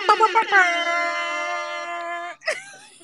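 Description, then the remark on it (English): An air horn sound effect, played to welcome a guest at a talk, blares a few quick, loud honks, then one long sustained blast lasting about two seconds, with a bright, buzzy tone rich in harmonics, followed by a brief rough burst. “Oh, wait, my air horn wasn't turned up.”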